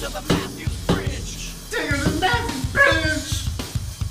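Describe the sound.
A dog, Humpy, whimpers and whines as if crying, in a run of high, wavering cries that slide up and down in pitch, with short yips mixed in and voices murmuring underneath.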